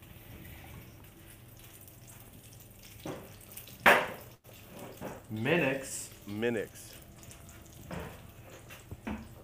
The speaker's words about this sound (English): Oh, dude, can you hear the sizzling? I do, I hear it. That's the calzone. It's got butter sizzling in it.